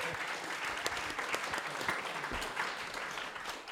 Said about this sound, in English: Thank you, everybody. One big round of applause. Thank you to everybody.